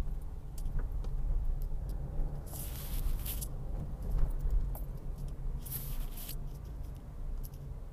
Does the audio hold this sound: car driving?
yes